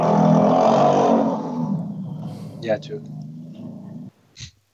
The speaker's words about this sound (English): What was that? I don't know. It was a motorcycle. Sounds like a motorcycle.